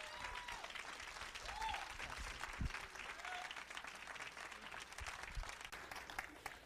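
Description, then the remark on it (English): A crowd at a Grace Point church service claps steadily in a dense, continuous wash of applause for the pastor as he comes up to preach, with a few faint cheers or whoops rising briefly above it and no talking. “So clap your hands for him.”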